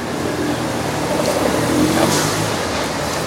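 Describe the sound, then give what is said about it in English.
A heavy vehicle engine roars loudly and steadily, with deep rumbling tones and broad road noise as a truck pulls away under acceleration. No one speaks. “Well, the guy got his ticket, and he's on his way. Yeah, he's going to be at the forefront of the revolution. He's got a truck.”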